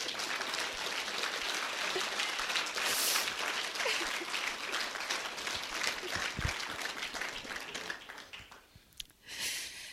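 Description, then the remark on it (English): An audience claps steadily in a dense, crackling wash of many hands that holds for several seconds, then thins out and fades toward the end. “We could clap right there if you want.”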